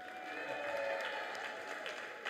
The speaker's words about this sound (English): So I think the minimum that we can all do is to give a round of applause now.